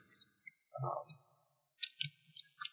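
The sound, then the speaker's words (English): Quick bursts of clicking and clacking of keys being tapped on a computer keyboard as someone looks something up, coming in short irregular clusters at moderate volume with brief pauses between them. “I can hear you typing right now.”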